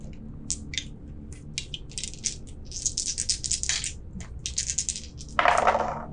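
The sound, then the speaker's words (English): Dice, rolled for damage in a game, rattle and tumble across a hard tabletop in a quick run of sharp, clicking clatters over several seconds, ending in a brief louder scrape-like burst. Fairly quiet, with no talking. “Roll damage.”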